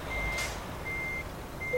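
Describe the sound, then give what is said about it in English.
A yellow Renault truck's backup alarm beeps in long, evenly spaced tones over a low engine rumble as it brakes and reverses in a loading area to pick up a trailer, with a short hiss of air partway through the first beep. “We're braking. We're reversing.”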